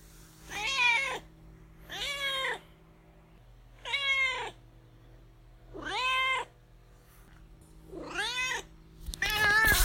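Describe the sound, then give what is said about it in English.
A cat named Duarte meows six times in a steady series, each call drawn-out and rising then falling, with the last one louder and rougher. No one speaks. “this perfectly segues into Duarte's corner, where my cat Duarte gives his opinions, which he has been throughout this whole show, because he does have a lot to say about Andrew Lloyd Webber.”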